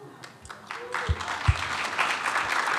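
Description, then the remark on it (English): A few scattered claps quickly swell into steady audience applause, a dense, crackling wash of many hands that holds at moderate loudness, with faint voices mixed underneath. “I'm not a 49ers fan, but I clap for that.”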